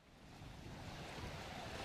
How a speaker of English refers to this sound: These are the sounds of the harbor in Havana.